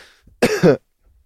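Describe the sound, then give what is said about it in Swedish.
One loud cough, a harsh burst with a short rough follow-through, heard on its own with no talking. It has the heavy, phlegmy quality of a wet chesty cough; the coughing brings up phlegm and is painful. “Alltså, när jag hostar så flyger upp slembollar och liksom, det gör ont när jag hostar.”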